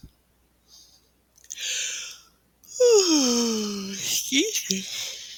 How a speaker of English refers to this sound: Yawning is good, by the way, when you're meditating. Kind of helps take you into the next level of consciousness.